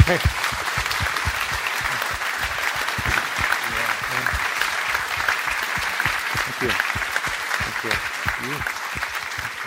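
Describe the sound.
An audience at Spirit Rock claps in a steady, dense round of applause lasting about ten seconds, with a few scattered voices and cheers mixed into the even, sustained clatter.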